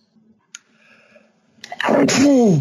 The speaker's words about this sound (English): Gesundheit. Thank you. Oh, there's got to be something in the air going on.